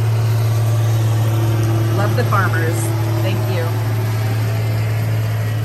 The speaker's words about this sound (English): Excuse me while this tractor goes by. Love the farmers.